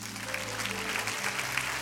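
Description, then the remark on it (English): An audience claps steadily in response to a remark about grace, a dense wash of many hands applauding at an even level for a couple of seconds, with a low hum underneath. “You see, yeah, you can clap for that.”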